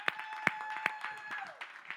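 A church audience stands and claps together, giving the Lord a hand clap of praise: a dense wash of many hands with a few sharper, louder claps standing out, while a steady tone hums beneath it.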